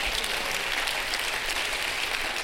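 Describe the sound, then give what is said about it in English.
An audience at a Sunday morning church service clapping their hands unto the Lord, a dense, steady wash of many claps at a constant level, with no clear rhythm and no voices rising above it. “Come on, somebody clap your hands unto the Lord.”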